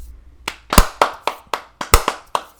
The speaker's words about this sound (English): Those are big claps. Four of them. Four big claps to move in to our QRR.